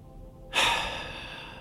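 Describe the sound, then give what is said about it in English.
A single deep, airy breath from a person seated in a chair with feet flat and eyes closed begins abruptly after a brief silence and continues steadily, moderately loud, slowly easing off without ending. No one speaks. “And first and foremost, I want you to take 3 really deep and slow breaths.”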